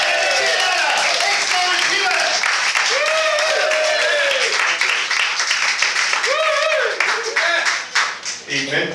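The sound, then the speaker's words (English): A crowd claps steadily in a dense, continuous wash of applause, with whoops and cheering voices rising above it, tapering off in the final second. “So, with that in mind, and the fact I'm asking you to clap, let's get to the next guy.”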